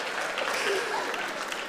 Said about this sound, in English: Ladies, gents, boys and girls, can we give a massive round of applause to our David and Goliath?